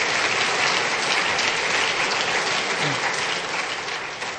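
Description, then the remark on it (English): Steady, dense applause from a church audience, a broad crackle of many hands clapping at once that holds strong before tapering off slightly toward the end. “You can clap for that.”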